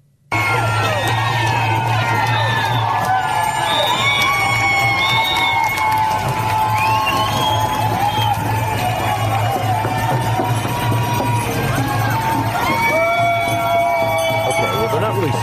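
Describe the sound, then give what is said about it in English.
A large outdoor crowd of anti-vaccine protesters walking down Broadway in New York City yells and cheers continuously, many overlapping voices shouting and whooping at once, loud, with a steady low rumble of street noise underneath. “Yelling, and they're obviously making a lot of noise about being angry about the vaccines, but that's the point.”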